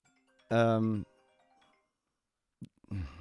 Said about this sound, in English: And I forgot to silence my phone, and I'm just going to leave this in here. We're going to be real, okay?